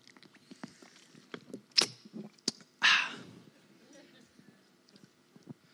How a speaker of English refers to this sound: Give you one moment to do that while I sip this water loudly.